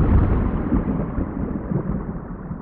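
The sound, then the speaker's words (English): A deep, sustained rumble of thunder from lightning, as might be heard on Venus, rolls steadily with no pause, heavy in the low end and fairly loud, with no voices present. “One thing we do know about Venus is that it has lightning. So you might hear thunder.”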